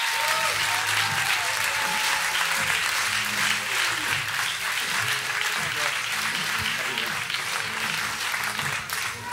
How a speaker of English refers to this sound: Would you give a big round of applause to Rex because he comes to minister this morning?